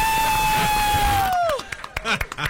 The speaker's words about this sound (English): Ladies and gentlemen of the Crab's Claw, a round of applause.